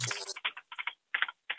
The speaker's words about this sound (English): Who's typing? Okay. Wow, wow. Let the man type. The man can type. Yeah, you can type, I guess. Makes us sound fancy. Like we're typing stuff.